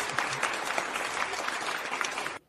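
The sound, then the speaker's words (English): A large stadium crowd cheers and applauds steadily, a dense wash of clapping and roaring that holds at full volume for a couple of seconds before cutting off abruptly. “You get that crowd noise from the stadium in there.”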